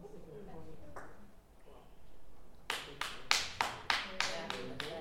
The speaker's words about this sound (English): She's the only one clapping? Yeah.